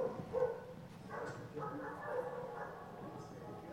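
A dog barks at another dog in short, excited bursts, a few sharp yips scattered over a few seconds, over a steady murmur of background noise.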